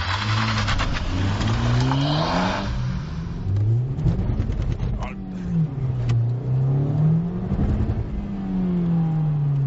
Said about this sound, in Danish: Og så prøver vi lige at se, bare når vi sætter afsted. Så giver den lidt gas.